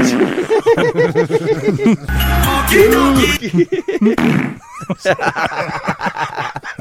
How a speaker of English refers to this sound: Farts are always funny.